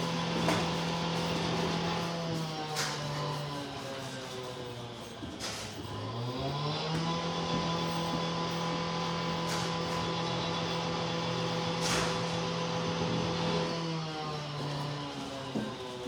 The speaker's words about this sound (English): Oh, the drilling is lovely.